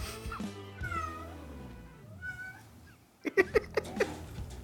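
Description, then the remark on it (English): A cat halfway up a door curtain meows repeatedly, drawn-out wavering cries followed by a quick burst of four or five short, sharp meows near the end, with no talking. “My cat is halfway up my door's curtain. Just meowing.”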